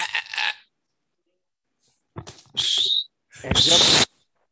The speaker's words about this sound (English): My boy tried to whistle with the mic.